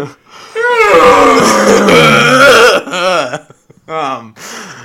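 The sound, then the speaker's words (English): A voice lets out a loud, drawn-out guttural scream lasting a couple of seconds, followed by a few shorter strained yells and groans, delivered as a vocal imitation of a primal scream. “Do you just go with a primal scream, like a guttural? Yeah, constant primal scream.”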